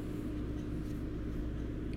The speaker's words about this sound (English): No one's gonna be able to hear that over my air conditioner.